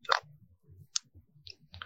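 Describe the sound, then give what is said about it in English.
A few sharp computer mouse clicks, irregularly spaced, over a soft low rumble with no one talking, as someone clicks over to view comments. “Then let's see, I'm clicking over watching some of the comments here.”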